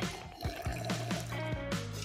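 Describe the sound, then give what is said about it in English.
Wet sipping and slurping of a peach-flavored kombucha, a series of short liquid pulls and swallows at an uneven rhythm, fairly quiet with a steady low hum underneath and no talking. “Mmm, sipping on right now.”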